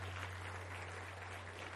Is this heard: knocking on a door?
no